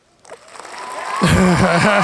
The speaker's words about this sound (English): Sorry, we forgot the segue button. Yeah, that's a good. Yeah, I forgot. We gotta make that's the, when you hear the claps, we're trying to transition.